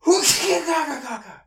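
A single loud sneeze, a sharp breathy burst that trails off into a brief voiced groan as it fades.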